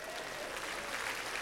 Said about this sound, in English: How about a round of applause?